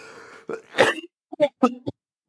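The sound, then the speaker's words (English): A single close, throaty cough bursts out loudly, preceded by a soft vocal murmur and followed by a few short, clipped vocal sounds before silence. “Excuse me for a cough.”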